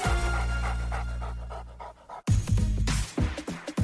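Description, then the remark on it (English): A German Shepherd pants in a quick, steady rhythm of short breaths, then after a brief pause breathes harder and more unevenly for a few louder huffs. “And we start with the dog with one of the strongest jaws in the dog world, the German Shepherd.”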